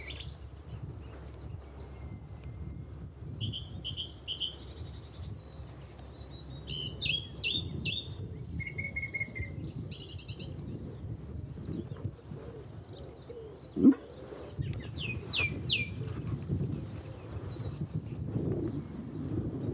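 Wild birds call from the trees with repeated high chirps and short trills. A low outdoor rumble runs underneath, and a single sharp knock sounds partway through.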